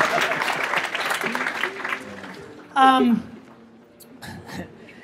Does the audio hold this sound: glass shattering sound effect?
no